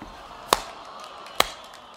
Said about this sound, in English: Why are you slow clapping? Why are you all slow clapping? Why are you speeding up?